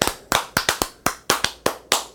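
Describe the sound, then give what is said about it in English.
Sharp hand claps, about nine of them, in an uneven, irregular rhythm with varying gaps, crisp and fairly loud with short decays and no voices. “You have to have that irregular clap.”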